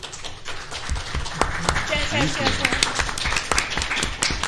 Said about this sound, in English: Hold your applause.